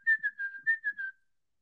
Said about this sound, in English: Yeah, you can whistle it and make it nice too.